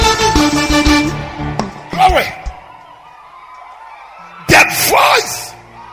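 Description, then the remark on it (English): A church audience bursts into loud shouts and whoops of praise to God in two surges, the first around two seconds in and a bigger one near the end, with a quieter stretch of murmur between them. “Come on, scream!”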